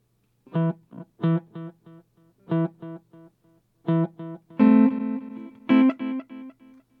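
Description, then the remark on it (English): A guitar played through an amplifier miked in a studio plays a short run of plucked notes, each followed by fainter repeating echoes from a delay effect, with the later notes ringing out longer. The playing is clear and unaccompanied. “Let me show you what the delay sounds like.”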